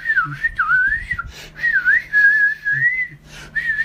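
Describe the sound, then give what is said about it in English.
A voice imitates aggressive flute playing in someone's face with loud, shrill whistling: a wavering, sliding melody in three bursts separated by brief breaths, with a few low thumps underneath. “Some very aggressive flute playing in my face.”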